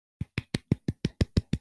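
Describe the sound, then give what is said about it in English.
A quick run of about nine soft hand claps at a steady, even rhythm, each a short dull smack, with no voices. “A little clap.”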